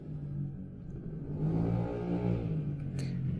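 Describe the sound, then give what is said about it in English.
A motorcycle engine rumbles past, its low throaty drone swelling louder midway and then easing off as it goes by, heard plainly with no talking over it. “See, the motorcycle that's passing by agrees with me.”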